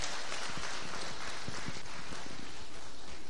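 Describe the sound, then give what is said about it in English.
An audience claps steadily, a dense crackle of many hands at an even, fairly loud level for a few seconds, with no voices standing out, as a preaching service's audience puts their hands together for the Lord. “Oh, if you was clapping for me, that would be great.”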